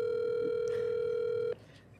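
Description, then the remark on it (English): A phone call to the speaker's brother rings out over a speakerphone: one steady, loud electronic ringing tone that holds for about a second and a half, then cuts off, leaving faint room noise. “Make sure you put the phone close to the mic if you're going to do it. On speaker.”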